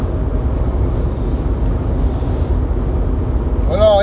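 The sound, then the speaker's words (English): Steady, loud low rumble of a truck cab on the move, engine and road noise droning evenly throughout, with a voice briefly cutting in near the end. “I like this driving this truck.”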